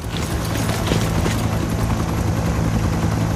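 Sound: helicopter rotor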